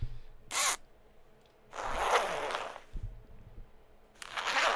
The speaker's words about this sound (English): Ah, the sack's open, ladies and gentlemen. Now, it's a well-filled sack again this week.